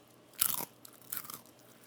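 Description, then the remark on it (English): A loud crunch, picked up by a microphone, of someone biting into a crisp chip made only from beets, followed by a second softer burst of chewing crunches, with no talking. “Oh, yeah, we got that crunch. That is a mic'd up crunch. And that's a beet, dude. I just ate a beet.”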